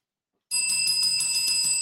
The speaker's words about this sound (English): Oh man, you hitting the bell, boss.